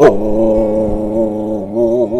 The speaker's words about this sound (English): here with my dog, Maxwell. Say goodbye, Maxwell.